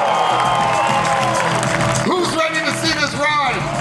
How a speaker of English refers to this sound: We are so happy to have you here, and we want to give a big round of applause to Universal for making it happen. Yeah!